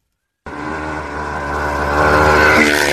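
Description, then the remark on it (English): A motorcycle engine roars in abruptly and loud during an extreme motorcycle stunt jump, its buzzing tone climbing as it revs harder toward the end, with no voices over it. “Yeah, this is a pretty extreme motorcycle jump.”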